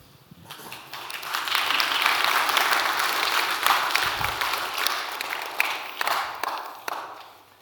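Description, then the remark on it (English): An audience bursts into applause, a dense wash of many hands clapping that swells quickly, holds steady for several seconds, then thins out toward the end. “Are you clapping because he's done or what?”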